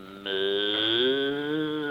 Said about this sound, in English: Get away from that cow. Is that a cow? I thought it was funny. All that plumbing and no sink.